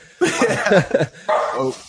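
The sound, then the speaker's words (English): A dog barks and yips in two quick bursts, a longer run followed by a shorter one, clear with no one talking over it. “He's gonna distract get my dog in here soon, I'm sure.”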